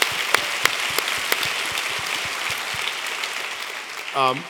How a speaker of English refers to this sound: Very good. Let's give him a hand. God bless you.